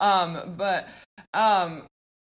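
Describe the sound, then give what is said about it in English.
A female pet dog coughs in a few rough, honking bursts, three main hacks with a brief catch between the last two, fairly loud, then silence. No one speaks. “Sorry, my dog is coughing.”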